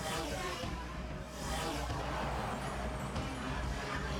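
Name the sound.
truck engine driving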